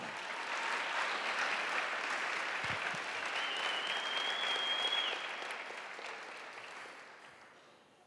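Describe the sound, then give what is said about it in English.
A church audience at a teaching session applauds the board members with dense, steady clapping that holds strong for about five seconds, then gradually thins and fades out, with a faint whistle-like tone briefly rising above the applause. “Clap for the board members.”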